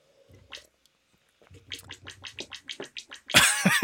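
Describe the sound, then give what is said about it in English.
Wet, squishy claps generated by a website: a single smack, a pause, then a quick run of about ten slapping claps in a steady rhythm, ending in a louder, splashy burst. “is a website where you can give yourself a wet clap.”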